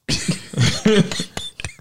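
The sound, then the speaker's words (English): A voice imitates the snoring of a person with sleep apnea that breaks into choking: rough, gurgling snorts and gasps in several uneven bursts, loud and raspy, with short catches of breath between them. “That's when it sounds like they snoring about to choke.”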